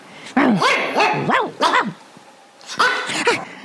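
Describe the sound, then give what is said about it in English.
A person imitates the yappy barking of a small Brussels dog: several sharp, high-pitched vocal yips in two quick bursts with a short pause between, fairly loud. “So that's how I would bark at you.”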